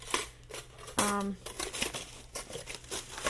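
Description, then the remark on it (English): Paper crinkles and rustles in a steady run of crackly bursts during the unboxing of kitchen accessories, with a brief ringing clink partway through. No one speaks. “There's a piece of paper.”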